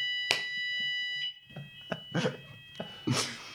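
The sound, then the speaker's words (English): A fire alarm in a corridor sounds a steady, shrill electronic tone, loud at first and then quieter, while scattered thuds and clatter break in now and then. “It's good that it doesn't just stop once and carries out in the corridor.”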